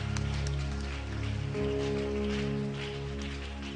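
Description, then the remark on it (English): A church audience claps steadily in a dense, continuous patter, backed by sustained keyboard or organ chords that shift pitch about midway through. “Oh, your clapping is very sick.”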